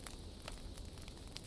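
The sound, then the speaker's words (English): A wood fire crackles steadily, with sharp pops and snaps scattered over a soft, continuous rumble of burning, no voices present. “The warmth, the light, and the rhythmic sound of the crackling wood combine to create a cocoon of tranquility.”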